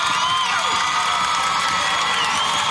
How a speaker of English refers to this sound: They're clapping. They have no idea who she is.